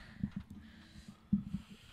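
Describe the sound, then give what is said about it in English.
Heavy breathing with soft, low, snorty puffs of air in irregular bursts: a couple early on, then a stronger pair later. Quiet overall, with no talking. “Are you breathing heavy already just for listening?”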